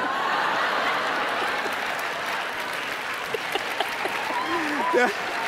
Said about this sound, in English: See, they're already applauding at taking the earrings off.